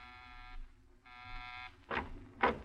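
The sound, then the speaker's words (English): An apartment door buzzer sounds two long, harsh electric buzzes, each about half a second, rich in bright harmonics, followed by two short bursts of rustling or shuffling noise over a low hum. No one speaks. “You pause for a moment before you buzz.”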